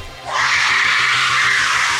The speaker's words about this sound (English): The sonic scream knocks the weapons from the Dino Rider's hands as smoke begins to pour from Hera's mouth.